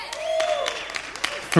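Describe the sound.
A crowd cheers briefly in answer to being asked who is rooting for the New England Patriots, with whoops and a high rising whistle over a steady wash of voices and scattered claps, ending in a louder burst.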